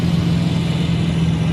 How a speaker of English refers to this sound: The camera captures three AAV-7s as they launch from a warship, then head toward the coast for an anti-landing exercise.